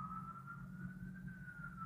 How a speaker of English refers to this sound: I hear an ambulance going by. What's going on there? Who's it going by? It's not going by me. Okay. Oh, it's probably on my end. Yeah, it's going by now. I'm here in New York City.